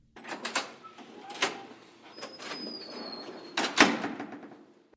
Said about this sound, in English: The front door opened.